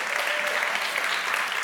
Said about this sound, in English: I want you to clap for the team. My gosh, an amazing team.